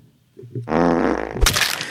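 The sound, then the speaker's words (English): A loud, wet fart rips out after a brief quiet moment, buzzing and sputtering for over a second before ending in a splattery burst. “That's a shart right there.”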